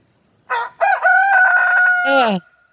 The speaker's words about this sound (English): She has a video of a rooster on a fence post crowing.